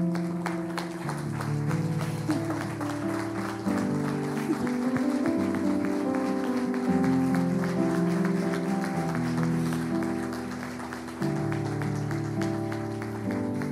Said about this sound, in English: I'm going to have my mom stand up, and if you guys could join me in just honoring her, giving a round of applause.